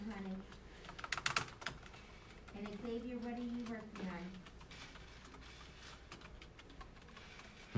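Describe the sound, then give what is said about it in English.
Rapid clicking of keys on a computer keyboard in quick irregular bursts, with people's voices talking briefly over the typing, as someone looks up news about a black hole. “Typing.”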